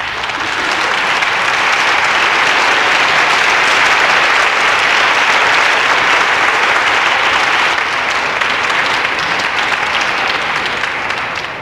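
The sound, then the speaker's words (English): Sustained applause from a crowd for Greg Jarrett, a dense steady wash of clapping that stays loud and even for about eleven seconds before easing slightly at the end, with no voices over it. “I think we need a little applause for that.”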